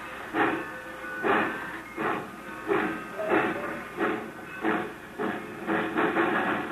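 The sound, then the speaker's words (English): A train engine chugs steadily along the tracks, its rhythmic bursts of steam hissing roughly every half-second, with no voices. “Now when that engine turns back, move fast. Head for that platform.”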